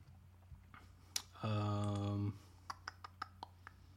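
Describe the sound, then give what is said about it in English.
A handful of light, sharp computer mouse clicks sound in an irregular scatter as someone searches betting sites for college baseball lines, interrupted by a loud, steady buzzing tone that lasts nearly a second. “We've got to do more clicking than we usually do.”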